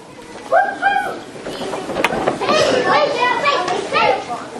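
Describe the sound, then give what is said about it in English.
A group of children chatter at once as they are dismissed to junior church, their high-pitched voices overlapping in a steady, lively babble with a few sharper calls rising above it for several seconds. “Children are dismissed to junior church.”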